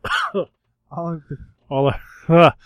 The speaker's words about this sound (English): this cough will never go away.